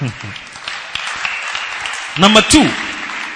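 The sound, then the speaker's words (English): An audience claps steadily throughout in a dense, even wash of applause, while voices briefly call out over it near the start and again toward the end. “I'm wondering whether it's something to clap for, but anyway, you have finished clapping, so clap.”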